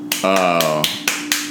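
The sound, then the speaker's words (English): A feeble, soft hand clap, a quick light smack followed by a few similar faint taps, with a short sustained voiced sound from a person in between. “That was the most piss poor effort as a clap I have ever seen.”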